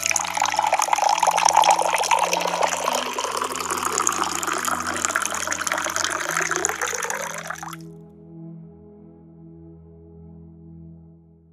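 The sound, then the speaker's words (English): Cold water pours steadily into a glass for about eight seconds, the rushing fill rising in pitch as it nears the top, then cuts off, leaving a low hum. “You deserve a nice cold glass of water.”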